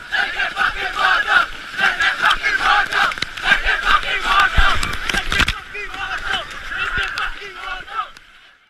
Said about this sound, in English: from the source of the Great Fish River in the Karoo to its mouth on the Indian Ocean, where the children will chant and then chant some more as they dive through the waves of the sea, like in this audio from 2016.